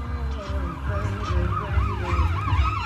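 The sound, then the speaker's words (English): A police car siren yelps in quick, repeated rising and falling sweeps from a police car following behind an Uber, loud and steady throughout, over a low rumbling engine or traffic noise. “Noah told me that there's a cop behind him.”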